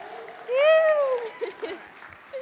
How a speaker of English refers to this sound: Let's give her a cheer.